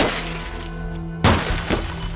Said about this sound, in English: While he hid inside the Findlutter's house, she bashed in his car windows.